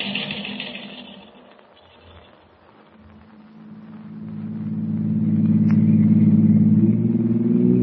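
A taxi engine hums steadily, dips briefly, then revs up into a louder, rising drone with a strong low rumble as the car drives on. No one speaks.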